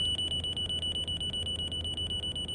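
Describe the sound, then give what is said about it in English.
A cockpit warning alarm on Flight 143, a brand new plane at its cruising altitude of about 40,000 feet after leaving Ottawa, signals a fuel pressure problem; a shrill high-pitched tone beeps rapidly and steadily, about six times a second, over a constant low rumbling drone, with no voices. “As the passengers were finishing up dinner, the first warning signal came on.”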